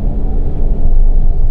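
A steady, low rumble fills the space, like an engine idling inside a truck cab, loud, with no voices, growing slightly fuller partway through.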